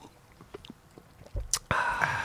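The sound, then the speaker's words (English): A sip of a drink: a few faint mouth clicks and a soft knock, then a short, wet slurping draw at the end, with no talking. “Oh, I need another sip.”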